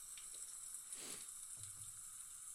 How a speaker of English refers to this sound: Let's pour a little out here.